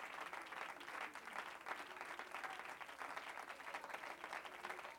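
An audience claps their hands in praise to the Lord, a dense, sustained round of applause, many hands blending into a continuous wash of sound that holds at an even, fairly loud level throughout.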